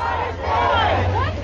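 A diverse crowd of some 2,000 people at a rally at the Plano Municipal Center on June 7th, calling for change after the death of George Floyd, shouts and chants together in a loud, sustained roar, many pitches overlapping with a steady low rumble beneath, filling the whole moment without pause.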